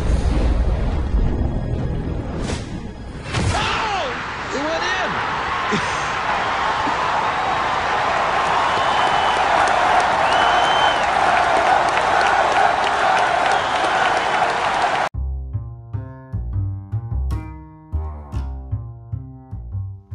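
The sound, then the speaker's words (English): A large outdoor golf tournament crowd at the 16th hole of the Phoenix Open, January 1997, erupts into a sustained, loud roar of cheering and applause lasting about ten seconds as a golfer hits his shot, then cuts abruptly to a short musical jingle. “Lead 16, listen to the crowd.”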